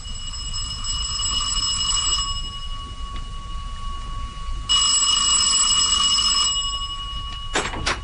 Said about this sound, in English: Well, just over an hour ago, I was in the study when the front doorbell rang. Mm-hmm. I don't think Charlie could have heard it because the bell continued to ring for some considerable time.